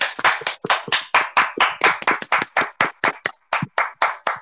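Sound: hand clapping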